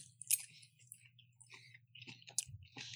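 Wet chewing with irregular clicks and soft squishes of someone eating a mouthful of food, over a low steady hum and no talking.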